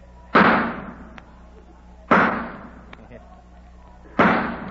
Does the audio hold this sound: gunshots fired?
yes